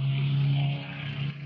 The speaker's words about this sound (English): As a car goes flying by in front of my work.